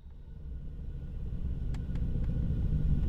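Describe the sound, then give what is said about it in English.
Steady low engine rumble from inside a moving unmarked truck, heard from the backseat, with a few faint rattling clicks partway through, constant throughout, no voices. “We left the restaurant and got into three unmarked trucks.”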